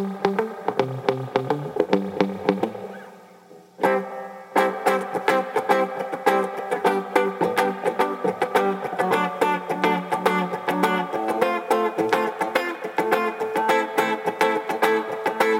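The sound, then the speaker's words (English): An electric guitar played through a spring reverb with a squashed, compressed, direct sound, strumming rhythmic chords fairly loud, with one brief pause before the playing picks up again. No one speaks. “You can really hear the spring.”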